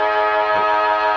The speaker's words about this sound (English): We're right underneath the siren here in the grandstand at Windy Hill.